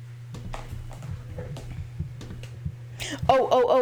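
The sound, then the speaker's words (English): Irregular clicking of computer keyboard keys being typed on loudly, over a steady low hum, with a voice starting up at the very end. “Okay, you're gonna hear the sounds of my keys tapping very loudly.”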